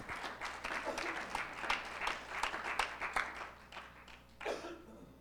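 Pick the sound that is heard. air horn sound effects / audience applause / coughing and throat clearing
audience applause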